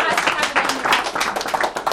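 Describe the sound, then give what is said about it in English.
An audience claps their hands after an announcement of 30 days of fasting and prayer, a dense, steady patter of overlapping claps, fairly loud, with voices mixed in underneath. “Oh, I thought somebody will clap their hands.”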